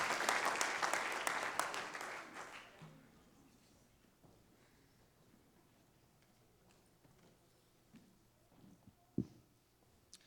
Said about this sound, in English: Clap your hands as you are seated this morning.